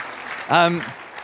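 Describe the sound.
A church audience claps steadily in a dense, even patter, and a single voice lets out a short, loud whoop partway through; the applause is for Harmony Church and its volunteers, at a Sunday morning service in Christchurch.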